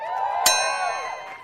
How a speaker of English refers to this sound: Oh, it's nice to hear that bell.